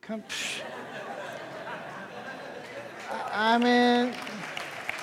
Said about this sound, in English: Don't applaud for that.